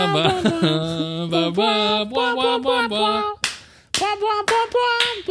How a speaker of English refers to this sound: Just ruin the audio with clapping.